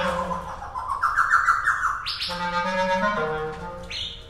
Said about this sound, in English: And then all of a sudden... Oh, hello. The laughing thrush was interested. That's the thrush.